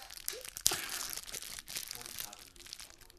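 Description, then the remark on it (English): Wrappers crackle and crinkle on a microphone for about three seconds, a busy stream of dry rustling with a sharp snap early on, fairly loud and continuous. “Crackling rappers on a microphone”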